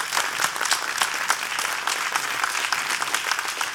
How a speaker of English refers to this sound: Stand up on your feet. Amen. Hallelujah. It's okay to clap before God and give him praise.